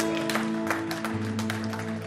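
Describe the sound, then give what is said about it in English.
A church audience claps in a steady, dense patter of many hands, moderately loud, celebrating someone accepting Christ as Lord and Savior, with sustained organ-like musical tones holding underneath the applause throughout. “You can clap for that.”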